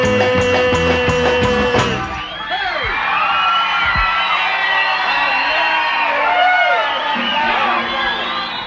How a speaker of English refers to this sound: There we go, the crowd went wild.